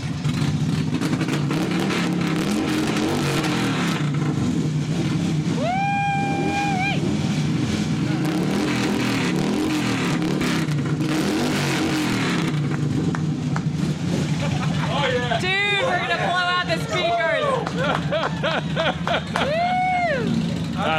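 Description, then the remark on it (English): Real motorcycle engines, not a sound effect, rumble loudly and steadily throughout, punctuated by sharp revs that climb and fall in pitch, with a burst of quick repeated revs toward the end. “When we used to do that in the neighborhood, they'd call the cops on us. Hey, keep those damn bikes down.”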